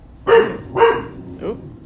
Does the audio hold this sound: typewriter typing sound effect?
no